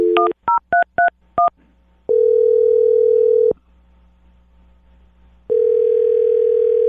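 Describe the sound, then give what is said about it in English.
A phone number is dialed for a call from the radio show Brooke and Jubal in the Morning: a quick run of about six touch-tone dialing beeps, then a steady ringing tone that sounds twice with a long silent pause between. Clear, with no voices. “Okay, here we go. I'm dialing your phone number.”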